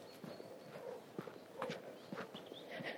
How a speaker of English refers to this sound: Right, I'm power marching up the road now.